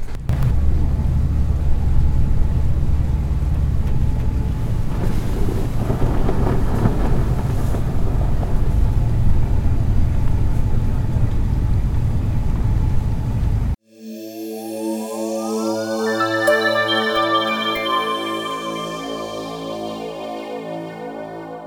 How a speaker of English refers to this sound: Yeah, you can hear there as we hit the ice. Crunch. I'll put the sound recorder up the front so you can get the breaking ice.